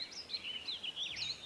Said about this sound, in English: Feathered winged creatures flapped their wings overhead and chirped pleasantly.